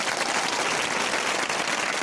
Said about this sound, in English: Round of applause for them. Oh, I got to find the round of applause.